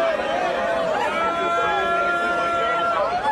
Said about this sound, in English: For those of you listening, those are students surrounding and booing and accosting a tranny activist holding a so-called transgender flag before one of the students rips it away.